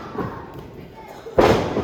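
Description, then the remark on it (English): The wrestler Heath Hatton is knocked down by Cash onto the ring mat with one loud, heavy thud near the end, a broad booming impact that rises sharply out of a steady background of voices and crowd noise. “And Cash knocks him down.”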